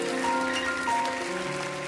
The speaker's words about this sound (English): Come on. You don't have to know the how when you've got the who. Come on, cheer for it.